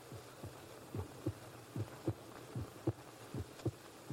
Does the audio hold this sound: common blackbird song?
no